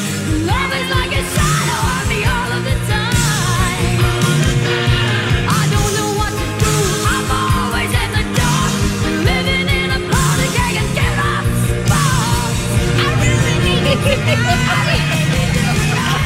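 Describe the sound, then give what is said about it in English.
A woman belts a rock power ballad at full voice, raspy and strained, over a dense, driving band with steady drums. The music stays loud throughout. “Oh, the way she's like yelling, singing through that.”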